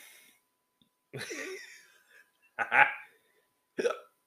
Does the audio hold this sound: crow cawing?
no